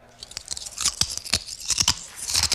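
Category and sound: human body sound, chewing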